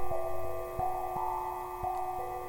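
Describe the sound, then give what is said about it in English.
A few sharp clicks of a light switch being flipped in a dark building, then a steady electrical hum from fluorescent lights, the buzzing tones holding constant throughout with no one speaking. “The building is dark and silent, but it comes to life with the flip of a switch and the hum from the lights.”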